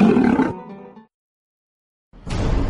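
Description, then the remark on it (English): A loud, throaty roar bursts out and trails off into a rumbling fade, followed by a second of silence before another harsh, gritty growl erupts. “One puff of Padilla and you'll roar too.”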